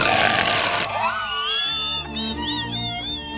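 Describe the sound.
A person imitates a ferocious lion roar: a loud, harsh, breathy burst that turns into a sustained, wavering growl with rising and falling pitch, lasting about three seconds with no words.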